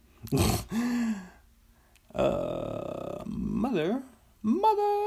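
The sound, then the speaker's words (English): A person imitates a wolf howl, with several drawn-out vocal calls whose pitch swoops and wavers upward, separated by brief pauses. “Oh, that was a good wolf.”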